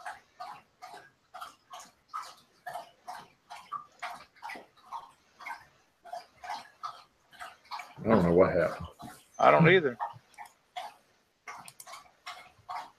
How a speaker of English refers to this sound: I can hear your dog drinking, though. Yeah, he's over here lapping away. He must have got hot, too.